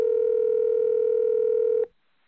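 A single steady electronic telephone dialing tone on a phone call to Dr. Hilary Jones drones loudly for nearly two seconds, then cuts off abruptly into silence. No voices are heard.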